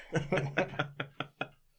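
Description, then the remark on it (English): Massive shed deer antlers clank together about seven times in quick, fairly even succession, hard clacks with a faint low voice or chuckle humming underneath the first few strikes. “I won't clank them together again.”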